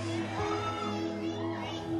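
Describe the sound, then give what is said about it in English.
A crowd of voices cheers and shouts together, a steady, fairly loud wash of excited noise that carries on without a break for a couple of seconds. “And I'm like, "Did someone just cheer for that?"”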